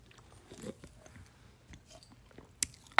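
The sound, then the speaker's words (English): Biting and chewing of a gummy candy being tasted, soft squishy mouth sounds with a few sharper crunchy bites, fairly quiet and steady, no one talking. “Oh, me being like, I totally thought it was a Sour Patch Kid when there's a clear.”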